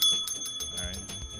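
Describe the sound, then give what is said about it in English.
A hand bell rings rapidly, about half a dozen quick clangs over a sustained metallic tone, with a low murmur rising underneath toward the end. “Where's my bell?”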